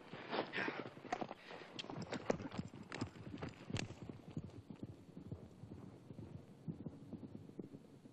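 horse hooves clip-clopping

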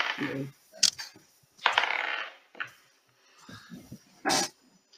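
dice being rolled

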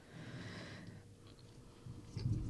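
chewing a crunchy snack

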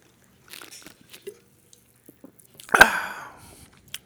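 sipping a soda

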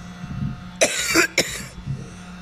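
man coughing

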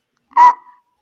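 hiccups

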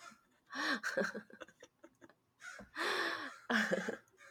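crow cawing

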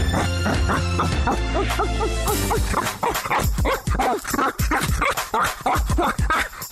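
dog barking

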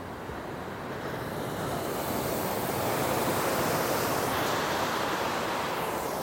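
ocean waves and surf

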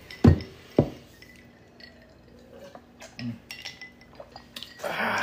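glasses clinking

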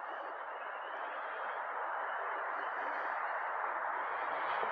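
frogs croaking

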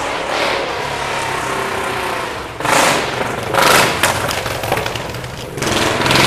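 motorcycle engine passing by

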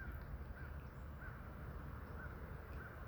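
bird singing

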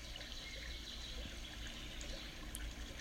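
flowing stream water

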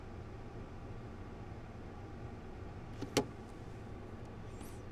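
inside a car

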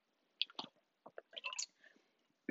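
speaker drinking water

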